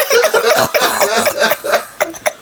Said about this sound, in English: I got this cough, man.